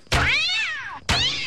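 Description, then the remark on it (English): A cat lets out a long, loud meow that rises and falls, then immediately starts a second one that is cut short. No one is talking. “All right, cats, back in the bag.”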